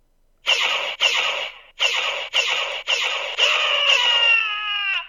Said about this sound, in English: he comes with what might be the coolest sound effects I've ever heard in anything ever, with the Rathar, which is a multi-tentacled monster